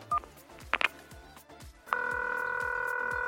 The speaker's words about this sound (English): I'm just going to ring her on the phone right now.